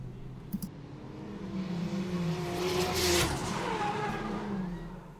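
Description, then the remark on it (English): GT race cars roar past on the Oulton Park track during the first free practice session before the season start, engines revving and droning as they sweep by, with tyres squealing through a corner; loud, no talking. “First chance to see the cars out, almost in anger, doing their thing ahead of the start of the season.”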